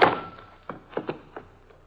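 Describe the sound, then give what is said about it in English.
A heavy, dull thud of a blow to the head from behind lands at the start and fades quickly, followed by four or five softer, scattered knocks. No voices are heard. “I hang up the phone and start to turn around just in time for whoever sneaked in behind me to lower the 6 o'clock boom. I feel the thud.”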